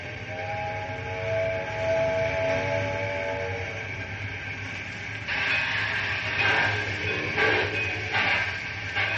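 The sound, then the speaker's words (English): A steam locomotive rumbles steadily while a whistle tone sounds, then bursts of hissing steam chuff out at a quickening pace as the train starts moving. No voices. “I said get the train underway, do you hear me?”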